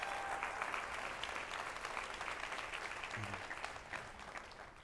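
A church audience applauds steadily for the speaker's wife as she is invited up, a dense, sustained wash of many hands clapping that tapers slightly toward the end.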